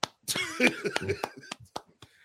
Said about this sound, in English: let me stand up while I applaud.